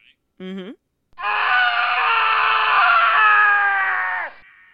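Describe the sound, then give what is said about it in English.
A sound effect of a man letting out a long, loud, anguished scream lasting about three seconds, preceded by a brief strained cry, harmonics wavering as it trails off. No speech. “It sounds torturous. Yeah, it does. Something's going on with it. They're doing something to this guy.”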